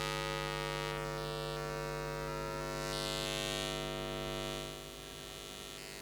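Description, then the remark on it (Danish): A steady electrical hum from wall wiring drones on without a break, rich in buzzing overtones, dipping slightly in level near the end. No one speaks. “Det er altså væggen, jeg lytter på nu.”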